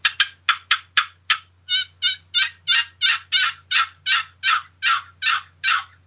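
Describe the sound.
A turkey call runs a gobbler yelp sequence: a few quick sharp clucks, then a long steady series of about fourteen raspy, even-paced yelps, loud and alone with no talking.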